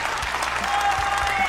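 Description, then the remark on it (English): An applause sound effect: a dense wash of crowd applause, steady and fairly loud throughout, with scattered clapping bursts and a faint hint of laughter mixed in. “I haven't actually got a regular applause. I've just got a laughy applause.”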